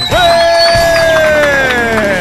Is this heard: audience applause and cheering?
yes